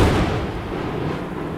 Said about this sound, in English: Ah! A storm! A thunderstorm! Oh, of course. Of course it's a storm.